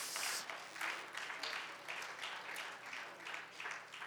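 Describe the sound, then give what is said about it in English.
A crowd gives a hand clap of praise to the Lord, a steady, dense wash of applause with a loose pulsing rhythm holding at an even loudness for about four seconds, and no talking over it. “Let's give the hand clap of praise to the Lord.”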